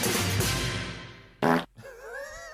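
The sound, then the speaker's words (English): A chair makes a long low rasping rub, then a short loud burst, then a wavering squeak that slides up and down in pitch, sounding rather like a fart. No one speaks. “That was the chair.”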